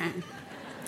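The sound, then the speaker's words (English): A person's voice mimics a sheep's bleat, a short, nasal, wavering "baa", fairly loud, with no other talking around it. “But the sheep, the only defense that a sheep has is he can go like this.”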